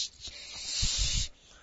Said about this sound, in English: How will Tallulah get to the moon? By balloon? No, by rocket. Whoosh!